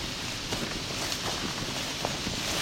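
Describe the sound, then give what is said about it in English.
The leaves of a trembling aspen tree in a swamp habitat rustle in a steady, dense hiss that holds at an even level throughout, with faint crackles and soft taps scattered through it and no voices; it is not very windy. “Not actually very windy, it's just a loud tree.”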